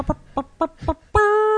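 Four short, evenly spaced clucks from a chicken, fairly loud, followed by a sustained squawk that rings out to the end.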